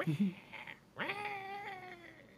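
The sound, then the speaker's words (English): A cat lets out one long, drawn-out yowl that swoops upward and then holds a strained, wavering pitch, fairly loud, following a brief muffled rustle. “Sounds like you're killing a cat.”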